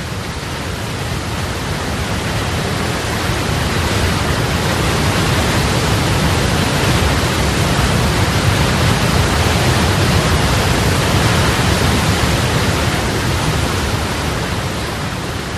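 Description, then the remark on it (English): A roaring waterfall pours steadily for the whole stretch, a loud, dense, unbroken rush of water with no voices or other sounds breaking through. “So a waterfall is quite deafening, and yet it's powerful.”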